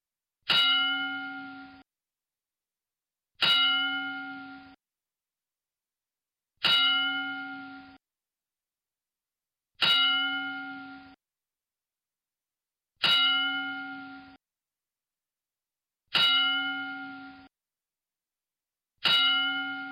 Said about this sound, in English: So we'll be back after this 10-bell salute dedicated to Big Van Vader, Leon White.